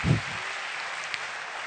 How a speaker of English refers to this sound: Give the Lord a round of applause today.